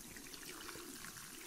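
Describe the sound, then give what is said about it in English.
Running tap water rinses shampoo out of a person's hair, a continuous hiss and trickle that stays even throughout, with no voices. “I'm just going to rinse the shampoo out of your hair, alright? Okay, so just turn the water on here again.”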